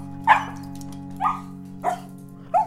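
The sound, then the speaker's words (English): A dog barks four times in short, sharp yips spaced about half a second to a second apart, over a steady low background hum. “How about a little kid walking their dog?”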